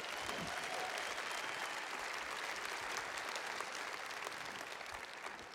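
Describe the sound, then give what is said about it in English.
Sustained audience applause, a dense, steady clatter of many hands clapping at an even loudness throughout, with no voices standing out above it. “Those applause are all for you, baby.”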